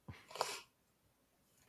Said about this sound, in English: My dog is growling at a dog outside. Gangster. Intimidation. He's hilarious.